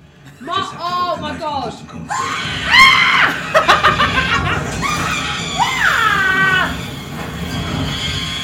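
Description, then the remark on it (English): Loud, high-pitched shrieks of horror reacting to a horrible event in a TV scene, a rising and falling wail first, then a run of frantic overlapping screams over a noisy, chaotic background lasting several seconds. “When you insert the audio for this reaction. Shrieking.”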